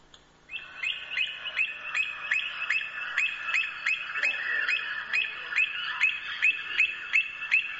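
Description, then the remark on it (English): An avocet calls over and over, a steady run of sharp, clear, piping notes at a quick even rhythm, loud, with a faint murmur of other birds behind it. “That was an avocet.”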